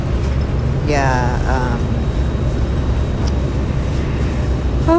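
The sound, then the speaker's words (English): Steady, loud low rumble of a city bus in motion, heard from inside while riding to a farmers market, with a brief rising tonal whine early on and faint muffled sounds over the constant engine and road drone. “I'm on the bus.”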